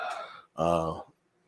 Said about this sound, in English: I don't know if you heard that or not, but my daughter just comes out of the restroom and just rips a huge belch. I heard it, but I didn't know what it was.